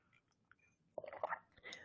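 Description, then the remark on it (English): A soft sip of cool herbal tea made with rose, spearmint, lavender, lemongrass and marshmallow root: a brief airy slurp with a faint swallow, followed by a gentle breathy exhale, otherwise quiet. “I'm just going to take a sip.”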